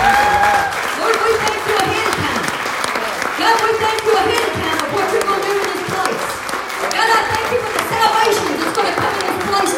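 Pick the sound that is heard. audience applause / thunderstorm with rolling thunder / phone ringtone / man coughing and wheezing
audience applause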